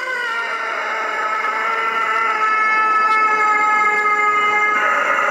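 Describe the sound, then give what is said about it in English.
A crow's call, not slowed down, strangely stretched into one long, steady, droning cry that hangs for several seconds at an even loudness, echoing inside a mechanic shop, with no voices. “But that's what no it sounds like with the acoustics there and then how it just kind of draws out that crow.”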